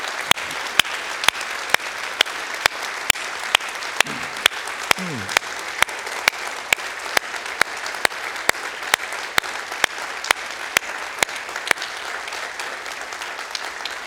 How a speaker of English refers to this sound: And can we just do that today by just applauding for those? Can we do that today? Come on.